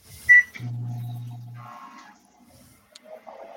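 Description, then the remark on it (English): A fax machine receiving a fax: a short high beep, then a steady low mechanical hum and whir with a brief buzzing stretch, ending in a few faint chirps. “Yeah, I just got a fax.”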